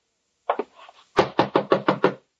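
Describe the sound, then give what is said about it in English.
A pair of soft taps, a brief pause, then five loud, evenly spaced knocks on a wooden door, sharp, with no voices. “Who is it? Open the door.”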